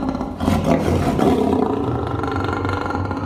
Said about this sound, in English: And that was a lion.